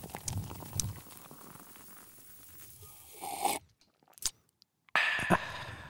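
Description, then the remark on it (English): A dark beer, Penn Brewing Co.'s Nut Roll Ale winter ale, poured into a glass: a steady crackly fizz that swells, then a brief pause broken by a sharp click, and a final loud burst of hissing foam. “I think it's time for you to pour us a beer here.”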